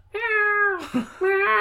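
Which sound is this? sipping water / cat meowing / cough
cat meowing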